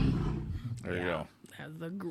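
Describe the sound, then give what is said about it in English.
A person imitates a grizzly bear's growl with their voice, a loud, throaty roar that rises and trails off over about two seconds, followed by a shorter rumbling growl. “Oh, see, now you made me get rid of all the stuff, so I don't have, all I can do is give you a growl.”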